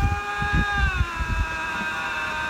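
Two lynx, head-to-head, trade a sustained, wavering whine, a high tonal wail that bends and overlaps itself, with low pulsing grunts throbbing underneath, fairly loud with no talking.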